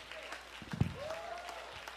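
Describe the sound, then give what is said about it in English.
A crowd clapping together in a dense, continuous patter, with a faint voice or sustained tone rising briefly through the middle. “Last week was rough, but God, on you would stand and clap your hands and say, you know what?”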